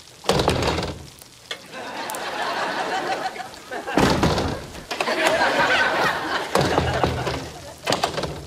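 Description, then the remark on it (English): A woman, after unlocking three locks, pulls at a door that is yanked against a lock, producing several heavy thuds spaced a few seconds apart, with rattling, noisy scuffling in between. “She unlocks the first lock, the second, the third, and then goes to pull the door open.”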